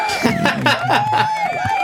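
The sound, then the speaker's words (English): An applause sound effect: a burst of crowd cheering and clapping, with whoops and a sustained whistle riding over the noise, loud and continuous for a couple of seconds. “Let's all give him an applause. Let's guess. Can we hear the applause?”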